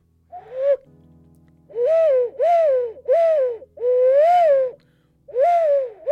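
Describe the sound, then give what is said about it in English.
An ocarina played clumsily: six breathy, wavering hoots of uneven length, fairly loud, sounding much like an owl, with a faint low hum between notes and no talking. “Shit, ocarina lads, I apologise.”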